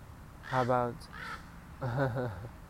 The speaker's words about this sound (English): How about some birds right now?